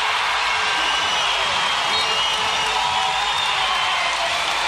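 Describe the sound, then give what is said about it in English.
A basketball crowd roars after Randall hits a three-pointer in a Sixers versus Wildcats game, a loud, sustained eruption of cheers and applause, a dense wall of noise that holds steady for several seconds without a break. “And the crowd erupts here.”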